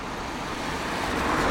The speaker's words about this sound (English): Car coming towards me.